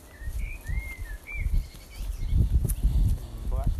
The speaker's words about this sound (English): Blackbird, probably. Yeah, I think it's a blackbird too. Blackbirds have a song which is quite changeable and quite sort of erratic, almost. And a melodic, changeable song can be all kinds of different things.